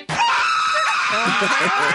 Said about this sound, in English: As it turns out, I screamed.